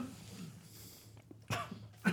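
Two sharp, harsh coughs burst out close by, one after a pause and the next following quickly, as if someone is choking on something, over a low steady background hum.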